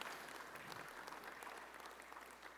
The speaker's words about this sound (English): But can I just have a warm round of applause for all the hands and feet that come together to make this possible?